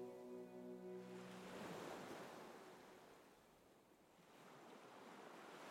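Distant waves crash and wash over a stone beach on Bartlett Point, Casco Bay, on a damp October night, in a steady, rolling roar, swelling and easing slightly; a low humming tone sounds briefly at the start, with no voices.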